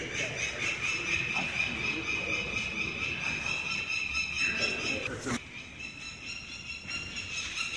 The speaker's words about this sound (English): American falcon chick.